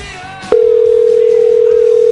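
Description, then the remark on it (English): A loud, steady telephone ringback tone of an outgoing call cuts in after a brief moment and holds unbroken to the end, with faint background voices underneath. “He's ringing. It's ringing.”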